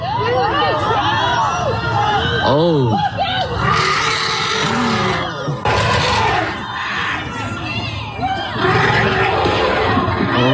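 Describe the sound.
Elephants in the San Diego Zoo elephant exhibit trumpet and rumble in loud, rising and falling blasts as a man holding his 3-year-old son breaks into the enclosure, while a crowd of people chatters, shouts and cheers excitedly throughout, with shrill bursts of noise around the middle.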